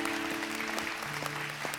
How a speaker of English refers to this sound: Amen. Amen. Give the Lord a big clap. Thank you, Lord.